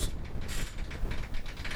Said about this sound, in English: Oh, storming. Yeah, there's a big storm outside, so sorry about that. Is that the storm in the microphone?